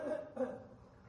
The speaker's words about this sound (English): I'm sorry, I got to clear my throat.